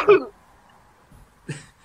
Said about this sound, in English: She's coughing at a severe amount. I think she's questioning what you're saying right now.